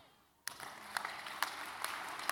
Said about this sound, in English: You're not clapping your hands well.